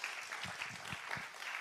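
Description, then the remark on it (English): An audience claps in a steady, dense patter at a fairly soft level, with no voices rising above the applause, after an announcement of a building expansion. “There's a clap. Come on, somebody, you can clap.”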